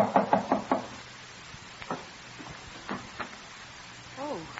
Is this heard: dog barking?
no